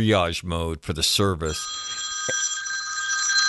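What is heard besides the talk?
old-fashioned telephone bell ringing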